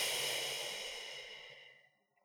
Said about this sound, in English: So I'm going to ask you to stop again and take a really deep breath in with me. Take that deep breath in and squeeze it out.